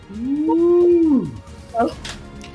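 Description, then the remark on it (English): A human voice imitates a dragon roaring in defiance: one drawn-out, tonal bellow that swells, holds and then slides downward, followed by a few brief, breathy growling sounds. Fairly loud. “It roars in defiance”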